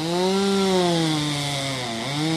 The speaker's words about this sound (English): As he saws through the dead branch, clouds of sawdust spray everywhere, illuminating shafts of sunlight streaming through the leaves.